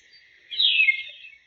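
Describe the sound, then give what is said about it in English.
A single high, thin bird call from a tufted titmouse swells briefly and fades, a buzzy, sustained note standing alone against a quiet background. “These are all titmouse. They have a lot of different calls.”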